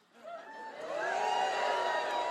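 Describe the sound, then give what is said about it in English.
An audience at the Live Wire radio show in Portland reacts with a mix of scattered boos and cheers to a remark about still reading romance novels, the noise swelling within the first second into a dense, sustained crowd roar of voices, whoops and a few laughs. “A little bit of booing, a little bit of positive.”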